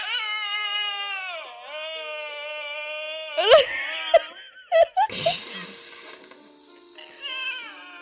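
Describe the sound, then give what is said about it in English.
A dog yodels in a long, wavering, tuneful howl that shifts pitch, breaks into a few sharp yelps, then carries on in a raspier, drawn-out wail. “It is, that is yodeling, I guess.”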